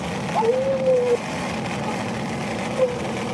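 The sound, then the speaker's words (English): A person imitates a motorcycle engine with a steady, humming vocal drone lasting under a second, then a brief second burst, over a constant low rumbling background. “You're a motorcycle? She screams at motorcycles, so, you know. Get a motorcycle sound going.”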